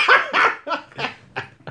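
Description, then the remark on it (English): A dog barks repeatedly, about six sharp barks in quick succession, loud at first, then slightly quieter toward the end. “I'm getting fucking outdone by a dog. This is it. Heckled by a dog.”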